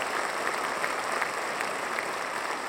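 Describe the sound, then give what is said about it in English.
A concert audience applauds steadily as New York Philharmonic conductor Jaap van Zweden walks out, a dense, even wash of many hands clapping at once with faint louder spots, continuing unbroken for a few seconds without any voices. “The conductor of the New York Philharmonic, Jaap van Zweden, he walks out, everyone applauds.”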